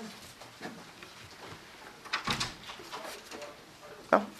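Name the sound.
door being opened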